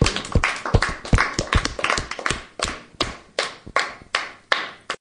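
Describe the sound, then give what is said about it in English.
A small group claps together, starting as a dense, uneven flurry of sharp hand claps that settles into slower, steadier rhythmic clapping. No one speaks. “Let's give a big clap for the podcast to finish off.”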